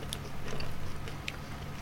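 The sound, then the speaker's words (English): Fairly quiet munching on thick, dry, turkey-and-stuffing-flavoured potato chips with green flecks of seasoning, with a few crisp crunches spaced irregularly over a low steady hum and no talking. “Going for the munch there.”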